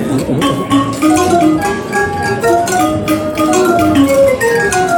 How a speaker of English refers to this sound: Hey, fellas, do you know what time it is? It's chime time.